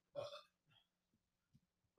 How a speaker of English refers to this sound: Hold on, I need to burp.